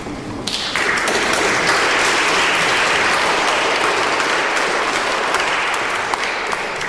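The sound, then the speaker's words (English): An audience breaks into steady applause, a dense, continuous wash of clapping hands that swells quickly and holds at an even, fairly loud level for several seconds after a poetry reading in the evening session of the September 22nd 100,000 Poets for Change event held at the Spire. “Let's give them another hand.”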